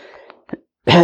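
A soft throaty sound and a brief catch lead into a single loud, harsh cough burst into a microphone at the end, from someone with a sore throat, with no one speaking.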